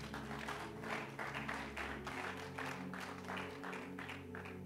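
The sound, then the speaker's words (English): An audience claps their hands together for the Lord in a steady, rhythmic beat, loud, over sustained organ or keyboard music, with no one speaking. “Give the Lord a mighty clap of hands.”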